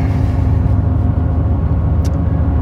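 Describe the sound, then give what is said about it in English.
A Japanese mini truck's engine drones steadily as it drives on a road, a loud, continuous low rumble with a brief high tick partway through and no voices. “I've already been pulled over by the local sheriff for driving a Japanese mini truck in the road.”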